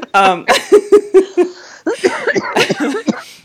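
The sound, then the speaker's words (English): Breathy, bursting laughter breaks into a run of short, choppy coughs, fairly loud, with rapid staccato bursts that blend laughing and coughing together. “No, I just totally made you cough.”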